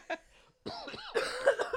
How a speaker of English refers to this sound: Yes, this is us coughing. Sorry. This is a sick cast.